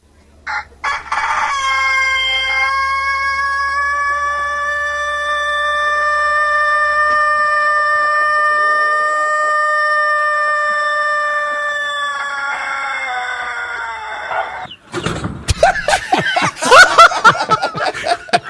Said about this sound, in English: And this rooster crows so hard in the morning, he passes out.